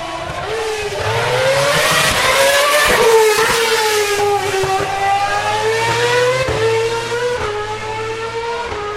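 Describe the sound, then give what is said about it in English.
A Formula One race car, a Lotus Renault R30 driven by Grosjean, roars past, its high-pitched engine whine sweeping and shifting in pitch for several seconds, loud throughout, with no talking. “That was Grosjean in a Lotus Renault R30, last year's car, I think.”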